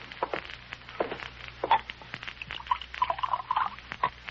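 A shower runs steadily in a bathroom, water hissing and spattering with small irregular splashes, fairly quiet, with no one speaking.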